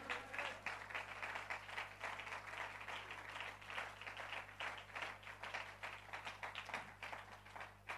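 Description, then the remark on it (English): A church audience claps steadily and continuously for several seconds as a clap offering to Jesus during a sermon, a dense, brisk patter of many hands with no voices standing out, over a low constant hum. “Give a clap offering to Jesus tonight.”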